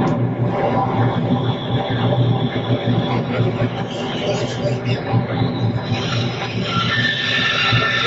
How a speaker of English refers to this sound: And now we're in the train.